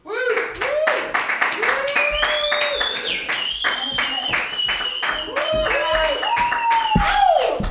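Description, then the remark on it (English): A comedy club audience claps at the host's request, steadily for several seconds in a dense, loud wash of hand claps, with whoops and voices rising and falling over the applause. “That's the clap that I was looking for.”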